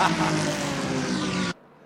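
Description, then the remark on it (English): A loud Acura race car engine roars, revving hard as it accelerates away from a pit stop, then the sound cuts off abruptly after about a second and a half. “It looks like for Tom, he does have clear visibility, and away goes the Acura.”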